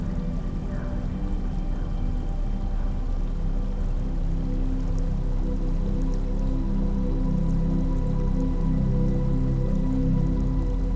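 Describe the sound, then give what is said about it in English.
A steady wash of running water trickles continuously at a moderate, even level, with faint dripping and splashing details and no voices or other distinct sounds. “The trickles of running water play in the background, like the notes of your favorite song.”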